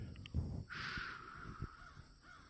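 bird, crows cawing

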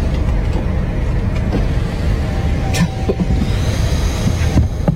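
vehicle, car

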